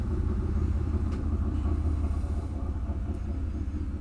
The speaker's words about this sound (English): sorry, hold for motorcycle. Swear to God.